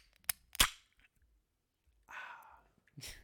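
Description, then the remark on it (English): A tall can of Liquid Death water cracked open: a small click, then a sharp, louder pop of the tab, a brief hissing rush, and one more short burst of noise. “I'm getting a little thirsty. I'm gonna crack this open.”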